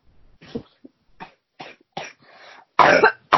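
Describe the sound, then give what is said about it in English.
A series of short coughs from a man who has COVID-19, starting as quieter hacks and building to one loud, harsh cough near the end, with no talking. “Yeah, come on, give us a cough.”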